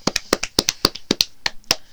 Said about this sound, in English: Let's give a nice clap for Addison Darcy's mom.